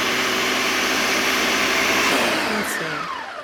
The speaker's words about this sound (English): Yeah, we're looking for a smooth, creamy texture. Depending on your blender, too, you might have to do it a little bit longer or it could go fast.